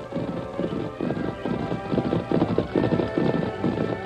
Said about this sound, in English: It was less than an hour later when Tonto, waiting patiently beside the main trail to Kingsville, heard the echo of approaching hoofbeats.